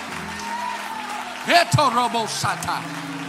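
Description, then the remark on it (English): A crowd claps steadily and shouts to the Lord after a prayer for healing in Jesus' name, loud voices rising up in excited shouts and cries partway through, the clapping continuing as a dense patter underneath. “If you believe it, clap your hands and shout to the Lord.”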